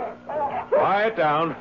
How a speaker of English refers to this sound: Quiet down now. That's a good dog. That's it. We're not here to do you any harm, boy. We're friends. Your friends. Yes, that's right, boy. There's a good dog. A fine dog.